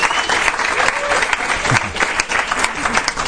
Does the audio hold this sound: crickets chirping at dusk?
no